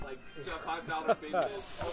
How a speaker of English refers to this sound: The chicken is... We have... sizzling in the pot. Are you recording the sound?